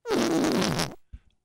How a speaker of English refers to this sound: Would you break wind on public transportation or hold it in? Well, let it rip, dude.